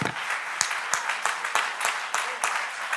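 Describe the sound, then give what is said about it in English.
A church audience claps their hands unto the Lord, a dense wash of applause punctuated by steady, rhythmic unified claps about three per second, fairly loud and with no voices standing out. “Let's clap our hands unto the Lord and magnify.”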